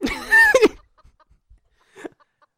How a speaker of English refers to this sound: Why do we bring a chicken? Why was this pitched to us? Why? I don't know. Why do we bring chickens in here? It's so bad.